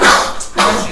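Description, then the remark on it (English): A loud, harsh sneeze comes in two explosive bursts of breathy noise with a brief pause between them, and no talking is heard. “Bless you.”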